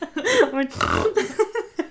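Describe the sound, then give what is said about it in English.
A person imitates a pig's oink with a rough, nasal grunt as their impression of their dad's noise, mixed with other voices making wavering vocal noises, followed by a few short, snorting bursts that trail into chuckles. “My oink.”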